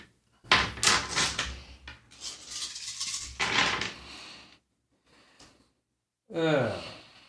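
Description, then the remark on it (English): Several bursts of ten dice clattering and tumbling across a hard surface, fairly loud, with brief pauses between rolls and a voice speaking briefly at the end. “Okay, yeah, you can add your full thing to it and roll an additional three dice.”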